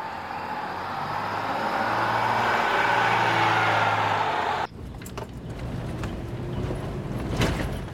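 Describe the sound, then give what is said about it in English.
A car rumbles steadily along a rough road, then the sound shifts abruptly to a jolting ride with repeated bumps and rattles as the wheels hit potholes; no one speaks. “Are you trying to hit every pothole in this road?”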